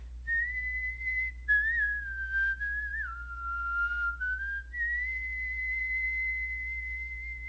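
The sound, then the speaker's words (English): A person whistles a bird's song: one long, steady high tone that wavers, slides lower in the middle and climbs back up to hold again, with a low hum underneath and no talking. “And it was doing its little song.”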